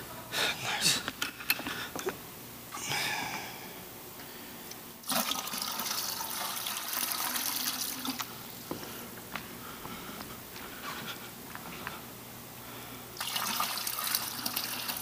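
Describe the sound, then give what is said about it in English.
Water pours steadily into a container held up by a person in two hissing spells, a longer one in the middle and a shorter one at the end, with quieter handling and faint background noise between. “You need some more water?”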